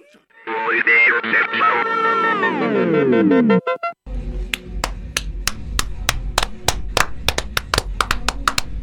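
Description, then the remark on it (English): A brief swell of music with sliding, descending tones gives way to steady, rhythmic hand claps, a dozen or more, loud over a low murmur of background sound. “Just us clapping along to the beach.”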